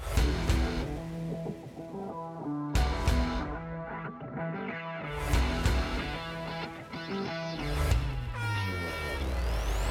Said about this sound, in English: You hear the air horn sounding, marking the final 2 minutes of the open red flag conditions.